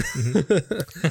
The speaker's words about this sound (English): I don't know why I have to keep clearing my throat. I was fine before we started recording.